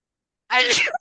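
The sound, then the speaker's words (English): A single sharp sneeze bursts out after a moment of silence, loud and breathy with a voiced, harmonic edge before cutting off abruptly. “I bless you again.”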